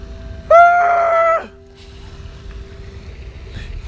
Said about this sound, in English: Oh, somebody just screamed. Okay. I heard another. Yeah, we heard another. Somebody else screamed.